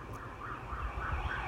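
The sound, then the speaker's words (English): A siren wails in rising and falling sweeps over a low rumbling traffic background with no voices. “They'll go to siren. Sirens surround us.”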